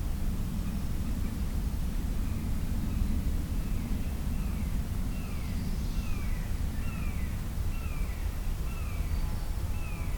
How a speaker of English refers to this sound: Another red-shouldered hawk, just like earlier.